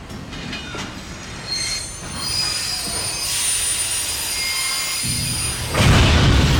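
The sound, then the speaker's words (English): A train's brakes squeal in sustained high-pitched tones over a heavy rumbling of wheels and cars, growing louder and harsher toward the end as the train jolts. No one speaks. “The brakes squeal and the train lurches, throwing Mercy and Molly to the floor.”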